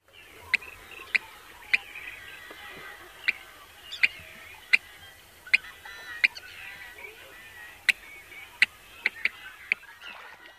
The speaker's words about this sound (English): Most birds in the blackbird family have similar sounding check calls. The yellow-headed blackbird version is a little more distinctive than other blackbird calls. It's a little longer and almost two-syllabled, like the check from a bank.